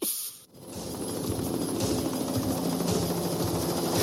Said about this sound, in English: there's a scene where they're in a chopper, and the music is so brilliant. This is the bad guys in chopper music.